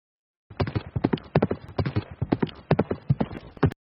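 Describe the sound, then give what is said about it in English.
Horse hooves clip-clop in a brisk, steady rhythm of many sharp hollow knocks, fairly loud, lasting about three seconds with no voices: Thomas Hendricks riding his horse the miles back from Flat Rock to Shelbyville, Shelby County, Indiana. “We see Hendricks now getting off his horse in Shelbyville”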